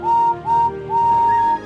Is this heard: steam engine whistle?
yes